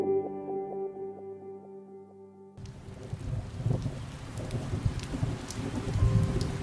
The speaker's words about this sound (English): Summer rain in Georgia tended to be met with sighs of relief. The drizzling pellets cooled fevered flesh and herded people into the comfort of their homes.